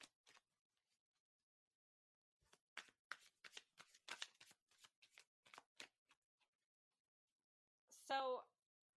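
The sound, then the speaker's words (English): A deck of tarot cards being shuffled for a reading, a quick run of crisp papery flicks and snaps lasting a few seconds, followed by a short voiced sound after a pause. “All right, Mary, shuffling for you, babes.”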